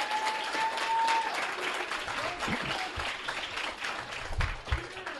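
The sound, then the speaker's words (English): An audience applauds steadily for about five seconds, a dense, even wash of many hands clapping at once, with a faint whistle-like tone early on and a few low thumps underneath. “Can we get a clap so we can check the levels?”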